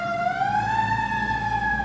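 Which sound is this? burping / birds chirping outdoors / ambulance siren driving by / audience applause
ambulance siren driving by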